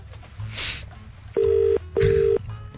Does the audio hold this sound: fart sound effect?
no